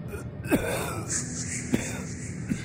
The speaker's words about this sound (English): It was someone breathing. It sounded abnormal, pained, almost like the wheezing coughs during the parade. An odd, low gasp on the inhale and a powdery exhale curtailed by a choked cough.